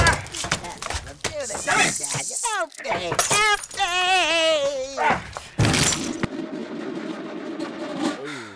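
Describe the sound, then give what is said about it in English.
A typewriter being smashed with a shoe: sharp thuds and clattering, breaking crashes, with a wavering, wailing cry in the middle and a low, fading hum at the end. “it's time of that damn typewriter got the shoe treatment.”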